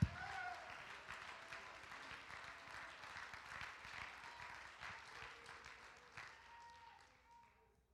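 A crowd of people standing to their feet claps hands together to thank God in dense, continuous applause, fairly loud and steady, with faint voices underneath, gradually thinning out and fading near the end.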